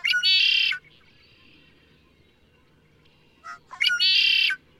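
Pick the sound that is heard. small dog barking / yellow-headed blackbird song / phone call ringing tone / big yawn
yellow-headed blackbird song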